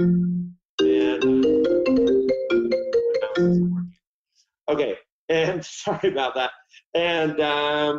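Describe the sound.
A melodic phone ringtone chimes through a quick run of stepped notes for about three seconds, loud, then stops and a person begins talking.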